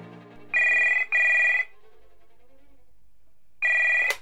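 A telephone rings loudly in a double-ring pattern, pauses, then starts another ring that is cut off by a sharp click, with no one talking.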